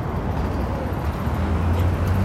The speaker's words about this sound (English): And then there's a red light right next to it with a stop hand. That is so crazy. And the cars are just going through. So I'm assuming something happened to that.